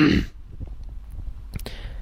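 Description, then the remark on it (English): A short, rough throat clearing, from a throat still bruised after a chokehold, bursts out at the start, fairly loud, followed by quiet low rumbling and a couple of brief clicks. “This is why I'm even clearing my throat, because to this day, my throat is still bruised.”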